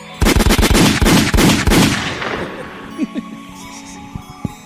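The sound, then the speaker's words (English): A loud burst of gunshot sound effects fires in rapid succession for about two seconds, then trails off into a fading rumble with a few scattered faint thuds. “I haven't hit the gunshots yet.”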